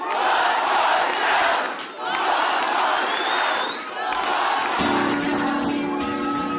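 A large concert crowd chants "one more song" in a steady rhythmic cadence, calling for an encore amid loud cheering and whoops, the roar sustained throughout before a musical tone enters near the end.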